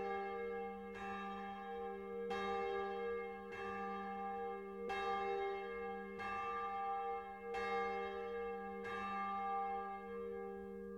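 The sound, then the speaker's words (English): Bell tones from an iPhone alarm going off at 6 in the morning ring out alone, about eight clear strikes at a steady, unhurried pace, each one's resonant hum carrying over into the next. “now I put on my phone, this is technology for you, every morning my iPhone goes off at 6 in the morning with bells, and a little whistle does at noon, and then the same at 6 p.m.”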